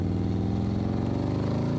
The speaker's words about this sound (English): You rolled high enough that before you even turn to look outside the car window, you realize motorcycles, German made, coming fast.